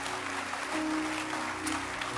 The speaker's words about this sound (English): While you clap your hands again, oh, let your hand clap be louder, sir.